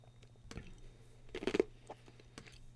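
Someone chews ice up close, with a few wet, crunchy bites spread irregularly over a few seconds and the loudest cluster of crunches in the middle. No one speaks.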